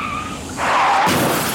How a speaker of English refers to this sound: Did you actually just crash the car? It's not my fault. You slammed on his brakes.